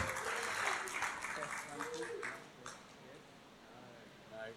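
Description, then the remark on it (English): A group at a Bible lesson bursts into steady, dense clapping for the first covenant between God and man, holding for a couple of seconds, then thinning out and fading, leaving faint murmuring voices behind. “Let's give a clap for our first covenant.”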